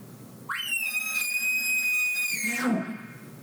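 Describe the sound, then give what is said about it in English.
A single elk challenge bugle imitated with a call: a rising squeal into a long, loud, high whistle lasting nearly two seconds, then dropping into a gravelly grunt at the end. “And then listen to the challenge bugle.”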